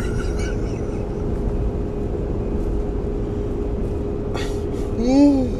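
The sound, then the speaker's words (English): A steady low hum runs throughout, then near the end a single drawn-out voiced yawn, begun as an almost-sneeze, rises and falls in pitch, briefly louder than the background. “Turned into a yawn.”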